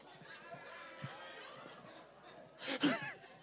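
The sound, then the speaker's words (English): A loud, heavy breath rushes out near the end during a worship service, breaking through a steady murmur of crowd noise. “Come on, breathe it. Breathing all heavy.”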